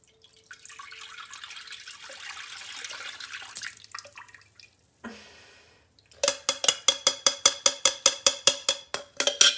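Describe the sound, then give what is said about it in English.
Steady rushing and splashing of water as a toilet is flushed, a brief pause and gush, then a loud run of quick, evenly spaced splashy pulses. No one speaks. “Now we're gonna flush it down the toilet.”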